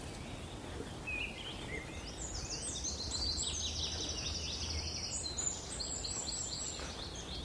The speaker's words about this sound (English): Funny, there's a bit of wren in the wood warbler's song. There's a wren there. Yeah, there's a wood warbler here somewhere.